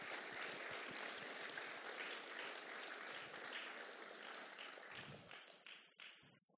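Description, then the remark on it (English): A church crowd applauds three volunteers invited onto the stage, many hands clapping in a dense, steady roar that holds for several seconds, then thins out to a few scattered claps and fades. “You want to give them a little round of applause?”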